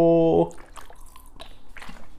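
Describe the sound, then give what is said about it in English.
A short burst of liquid sounds follows a brief humming tone: soft gulps and drips of water being sipped, fairly quiet, with small wet clicks scattered across a couple of seconds. “A little water before the pod.”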